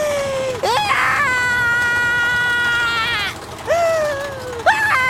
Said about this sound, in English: Now remember, when we get to the top, you have to start screaming. And then you keep screaming all the way down, like this.